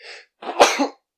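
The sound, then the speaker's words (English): A single sharp, fairly loud sneeze, preceded by a quick breathy inhale and ending in a short rasping tail. No one speaks. “Bless you.”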